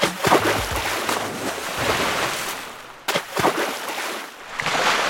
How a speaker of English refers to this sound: They took matters into their own hands and started dumping e-scooters into the river.